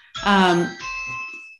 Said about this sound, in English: Excuse my bell here.